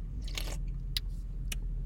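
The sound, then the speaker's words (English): Quick slurping sips from a can of Celsius sparkling watermelon energy drink, a longer hissy pull followed by two short sharp sips, over a low, steady rumble like a car interior. “So this is sparkling watermelon. But alright, first sip.”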